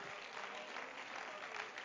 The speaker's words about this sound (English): Praise God. Come on. Let's give a hand clap of praise unto God.